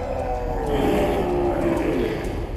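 Loud, overlapping animal snarls and growls with a drawn-out howl sliding through them. Several beasts roar without pause for a few seconds: a bear, a tiger and a wolf, which are three dwarves shapeshifting.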